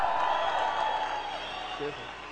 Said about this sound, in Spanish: ¡Diamante! ¡Excelente! ¡Des un aplauso, campeones!